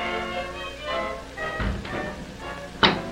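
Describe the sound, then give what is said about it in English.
A heavy door secured with a deadbolt, a chain, a heavy latch and a padlock on the outside is unlocked: its locks clunk and thud a couple of times, then a sharp click rings out, all over a sustained, droning musical background. “It doesn't sound as if the door's ever been opened. Good solid locks, though.”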